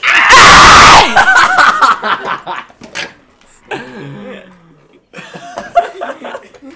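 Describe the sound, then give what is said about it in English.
A sudden, harshly distorted scream blasts into the microphone for about a second, from the ASMR meme kid video in which a kid smashes an egg on his mom's head and screams in the mic, then gives way to people talking and chuckling. “He just smashes an egg on his mom's head and screams in the mic.”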